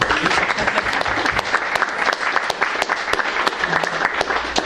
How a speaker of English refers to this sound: So let's all give them a clap.